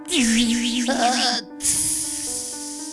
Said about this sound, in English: That's what I call a sizzling sear right there.